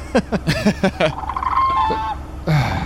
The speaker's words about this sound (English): This is apparently, according to this video, there's a whooping crane called. Oh, a whooping crane. Yeah. So it kind of had like a water aquatic aspect to it.